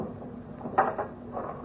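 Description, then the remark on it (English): The bottom drawer of a desk holding boat keys is pulled open with a brief wooden scrape and a soft knock, followed by a quieter rattle, over a low steady hum. “The keys are in the bottom drawer of the desk.”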